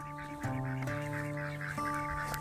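A group of ducks quacks continuously, their nasal, buzzy calls overlapping with a few sharper bursts standing out. The birds sound fairly loud, with no one talking.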